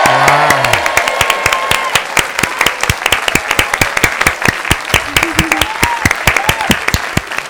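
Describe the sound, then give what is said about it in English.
A studio crowd cheers and applauds: loud, steady clapping fills the whole stretch, sharp claps in a quick uneven rhythm, with a few brief whooping voices rising over it near the start and again toward the end. “Studio crowd goes crazy.”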